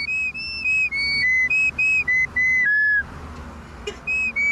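A cheap one-dollar recorder squeals out a pop tune in a run of shrill, piercing high notes, loud with no voices, then pauses before one last stray note.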